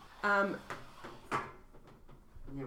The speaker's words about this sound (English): oh, good call. Let's close the door. There's a little bit of environment sounds.